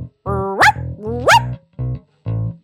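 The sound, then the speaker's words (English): A person imitates a dog barking: two rising, yelping barks followed by two shorter, lower woofs, loud with brief pauses between them. “Okay, what did you think of my dog impression?”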